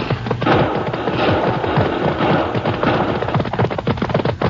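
A rapid, dense barrage of gunshots in a shootout, many sharp cracks overlapping into a continuous loud clatter for the full few seconds, with no voices.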